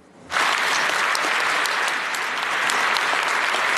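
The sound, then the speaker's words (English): A large audience in Canada's Parliament bursts into loud, sustained applause for Ukrainian President Zelensky after a brief quiet moment. The dense clapping holds steady for about a minute, with no voices rising above it. “A big round of applause.”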